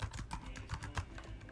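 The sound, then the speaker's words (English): Rapid, irregular clicking of computer keyboard keys as a company name is typed in, a steady run of keystrokes with no voices, fairly quiet overall. “Can you guys see me typing?”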